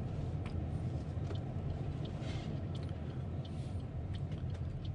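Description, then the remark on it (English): Steady, low rumble of cars on State Highway 10 toward Doubtless Bay and the Bay of Islands, a continuous wash of road noise at even loudness with faint hissy swells from passing traffic, no voices. “You turn where that, now where these cars are going.”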